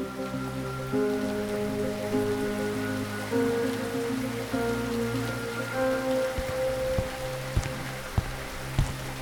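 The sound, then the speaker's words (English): Steady rain patters on a surface at night beneath low, sustained musical tones, with a few sharper drips standing out near the end. No one speaks. “The memory of returning to my apartment that rainy night, 10 years ago.”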